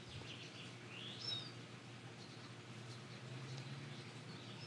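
bird, birds chirping outdoors

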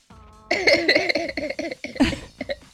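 human body sound, coughing

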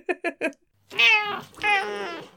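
animal, cat meowing

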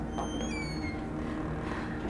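household object, door opening

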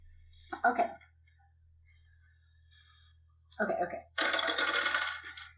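household object, many dice being rolled

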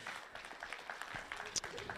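crowd, audience applauding

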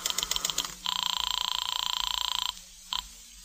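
signal or alarm, telephone ringing

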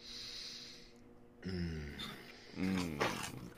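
human body sound, sniff

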